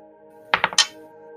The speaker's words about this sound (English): Ooh, the sound of a real die.